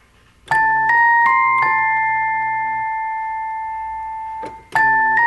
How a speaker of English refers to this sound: And then the bell synth that comes in here. It gives you this melody.